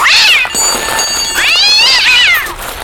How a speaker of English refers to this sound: Oh, look. A little cute fuss-fuss. That's my mate Spike's stinking cat. Follow me everywhere, looking for food.